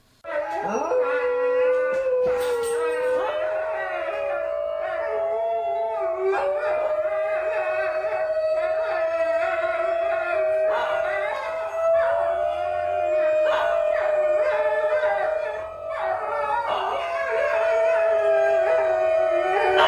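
A group of about four or five New Guinea singing dogs howl together inside a home in a sustained, overlapping chorus of wavering high-pitched tones, loud, continuing almost without pause with occasional yips breaking through. Recorded by the New Guinea Wild Dog Foundation.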